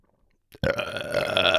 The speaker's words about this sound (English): Dude, every podcast we burp. You have to. All right. We burp cast. We burp. We burp cast.